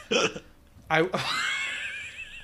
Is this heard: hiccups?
yes